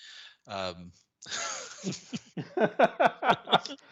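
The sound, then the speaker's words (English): A strained, voiced throat sound, then a harsh breathy burst and a quick run of short, rough coughs in a steady rhythm, fairly loud with no speech. “Sorry about the cough today, folks.”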